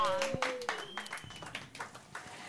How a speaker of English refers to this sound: Perfect explanation for her inspiration. I think that deserves a round of applause, don't you? I think, yeah!